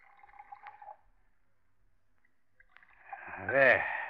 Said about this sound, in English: Now, 2 glasses, please. Brandy snifters, of course. If anyone should see us, Mr. Brown, I'll pour